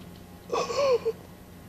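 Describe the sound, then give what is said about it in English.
A voice imitates the single labored, gasping inhale of an unconscious man lying in bed: a strained, breathy rasp with a wavering pitch that lasts about half a second and ends with a short catch, fairly loud. “When he would inhale, it'd sound like this.”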